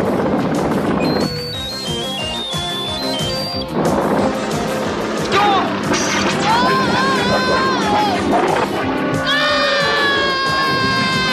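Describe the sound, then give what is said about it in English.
Three people scream in high, wavering cries while dangling in a cable car from a tower after its cable is cut, over a loud, chaotic background of crashing and rumbling noise, the screams rising and breaking repeatedly through the second half. “ends up cutting the cable with the trio still inside, and they're screaming and dangling from this tower.”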